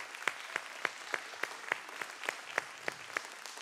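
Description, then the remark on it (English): An audience gives one more round of applause one morning, steadily, a dense crackle of many hands with a sharper, evenly spaced clap beat running through it at about three per second. No one speaks. “Let's give her one more round of applause this morning.”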